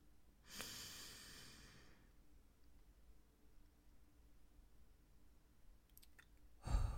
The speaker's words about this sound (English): At this point, you should be taking a deep breath and just breathe.